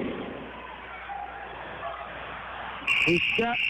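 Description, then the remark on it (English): Steady crowd murmur and a man's commentating voice run throughout a basketball game between the Broncos and the Logansport Berries, then a loud, harsh buzzer ending the third quarter blares abruptly near the end as a Broncos shot misses, holding a raspy, sustained tone over the talking. “Cotton misses it on the buzzer for the Broncos.”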